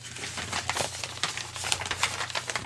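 Papers being shuffled: a steady run of dry, crisp rustles and crinkles with a few sharper flicks, over a low constant hum and no voices.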